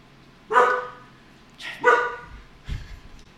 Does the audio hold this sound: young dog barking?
yes